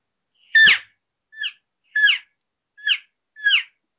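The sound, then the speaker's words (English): Five short, high-pitched, nasal calls imitating an excited elk calf, made with an elk call, in a steady series about half a second apart, each a quick squealing mew, clear with silence between and no talking. “It to me, it sounded like a kind of a high pitched, kind of nasally calf kind of an excited calf sound.”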